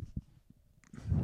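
A soft, low burp rumbles up near the end, preceded by a few faint gulping thumps in an otherwise quiet stretch with no talking.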